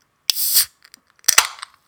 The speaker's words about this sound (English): So what I'm going to do is going to open a can of White Ultra Monster. Everyone listen, be quiet.